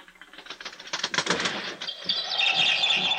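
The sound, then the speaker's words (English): A bird outside, trying to get in, flaps and flutters its wings rapidly against a rattling window pane, a burst of soft thuds and taps, followed by a few bright, high chirps. “There's some bird out there trying to get in.”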